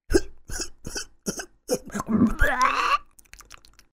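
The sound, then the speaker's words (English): A voice imitates a cat hacking up a hairball: a quick run of sharp, rhythmic hacks building into a drawn-out, gurgling retch, then a few faint trailing clicks. “He'll cough up a sticky, disgusting hairball.”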